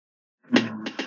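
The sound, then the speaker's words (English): A single voiced sneeze bursts out of silence, a loud breathy blast with a low vocal tone, trailing off into a couple of short sharp bursts of breath. “Bless you.”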